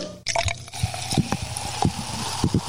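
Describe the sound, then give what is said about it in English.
Water pours into a glass in a gurgling stream, with a series of bubbly splashes and glugs over a few seconds and no talking. “Look, I need some water to start.”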